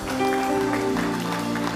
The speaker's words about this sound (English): Give the Lord a mighty clap of hand.